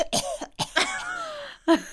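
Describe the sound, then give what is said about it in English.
A person deliberately makes themselves cough: a few short, forced-sounding coughs, fairly loud, separated by brief pauses and voiced, throaty rasps, with a final sharp cough near the end. “But you know when you ring up work and you're doing a sickie and the first thing you do is make yourself cough.”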